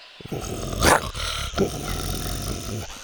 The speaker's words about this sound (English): nipped at it and growled.